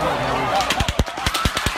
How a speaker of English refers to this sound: In a matter of seconds, a country music festival turned tragic, a storm of gunfire raining down upon an innocent crowd. He was shooting everybody, and there was dead people everywhere